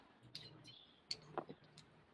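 Dice clatter across a hard surface in a few quick, light clicks, a brief scattered tumble, quiet, with a faint low murmur in the background; a con roll in a game that comes up 17.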